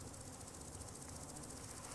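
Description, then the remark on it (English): A dense, steady hum of many bees buzzing together, like a large swarm moving overhead, continuous and even throughout with no voices. The noise was heard across the common from Moneydells to Mr. White's Avenue Gate on June 28th, 1792. “Any person would suppose that a large swarm of bees was in motion and playing about over his head.”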